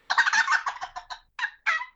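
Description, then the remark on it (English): A tube-style turkey call produces a rapid, rattling gobble, a burst of quick throaty notes that breaks off, then two shorter gobbling bursts follow. Fairly loud, with no talking. “I can cut on it really well, and I probably will use it for that purpose, but my yelps aren't there yet, and I think I might be able to get a little gobble action out of there.”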